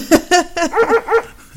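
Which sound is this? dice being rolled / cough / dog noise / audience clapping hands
dog noise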